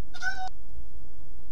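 A single short meow from Atlas, Jason's cat, clear, lasting under half a second, followed by quiet room tone with no talking.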